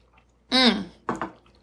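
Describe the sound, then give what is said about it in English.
A brief slurping sip of a drink, followed a moment later by two quick, soft swallowing sounds, with no talking. “Have a little sip.”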